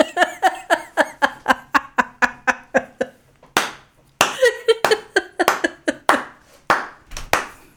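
Quick, steady hand clapping, a dozen or so sharp claps in even rhythm, then looser, irregular claps mixed with bursts of laughter toward the end.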